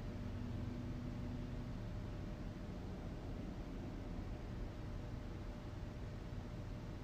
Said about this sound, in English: You hear the pool pump moving. Probably hear a lot of things.